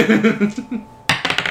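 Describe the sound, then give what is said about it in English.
Dice rolled for a medicine check clatter onto a hard table: a sharp first hit followed by a quick run of smaller bouncing clicks, fairly loud, right after a brief stretch of voice. “Did you roll both dice?”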